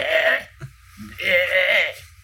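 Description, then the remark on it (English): Two loud sheep bleats: a short one first, then after a brief pause a longer, quavering bleat with a wavering tremble, no other sounds around them. “They are both loud and obnoxious sheep.”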